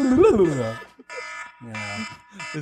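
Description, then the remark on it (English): A harsh, stressful phone ringtone, also used as an alarm, blares in repeated buzzy, alarm-like bursts separated by short gaps, loud, as a person speaks briefly over it. “I picked the most stressful phone ring.”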